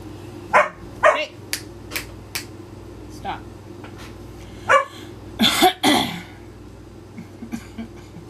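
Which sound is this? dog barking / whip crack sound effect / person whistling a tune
dog barking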